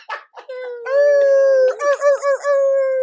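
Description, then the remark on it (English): A person imitates a German Shepherd dog howling: a few short vocal yelps, then a long, loud, steady howl that breaks into several wavering, yodel-like pulses before holding again. “I'll get 3 big-ass German Shepherds. Sick. Just be barking all the time.”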